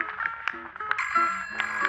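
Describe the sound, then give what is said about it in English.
A telephone rings with a bright, metallic bell trill, sounding in a few clanging bursts over sustained ringing tones, moderately loud with no voices. “Excuse me, phone's ringing.”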